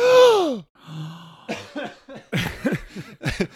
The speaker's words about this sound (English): I need to try that gasp again.